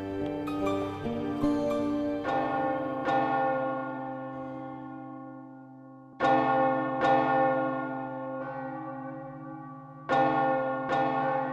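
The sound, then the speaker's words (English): Church bells toll loudly for the dead, a quick cluster of strikes followed by slower, spaced peals, each long resonant hum ringing out and overlapping the next. No voices. “Church bells were rung for every death. The bells were hoarse with tolling.”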